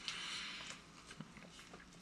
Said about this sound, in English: Well, we will take our first sip. Cheers. Cheers.